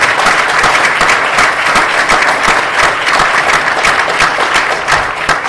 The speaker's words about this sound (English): Give her a round of applause, because she broke through a lot of barriers.